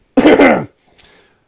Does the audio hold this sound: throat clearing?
yes